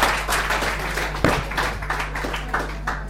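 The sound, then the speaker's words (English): A crowd applauds two guests honoured for their years of hard work for the club, with dense, steady clapping that rolls on without a break, over a low constant hum, with a single sharper burst partway through. “Big round of applause.”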